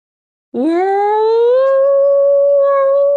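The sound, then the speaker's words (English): A person's voice imitates a whale call: one long, loud, rising moan that swoops upward and then holds a steady, drawn-out tone, heard alone. “Let's hear your whale impression.”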